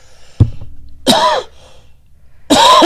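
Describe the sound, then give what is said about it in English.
Two harsh, loud coughs into a microphone, spaced about a second apart, with a sharp knock of the microphone being hit just before the first one and no talking. “I was trying not to cough in the mic, and I, bam, hit it.”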